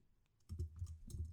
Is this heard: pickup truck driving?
no